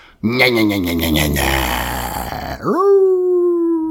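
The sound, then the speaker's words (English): A person's voice does a loud imitation of a vampire's howl, a guttural screech: a strained, gritty wail that breaks off, then swoops upward into a sustained, piercing tone. “I can't do the howl that the vampires do. No, you call that a howl.”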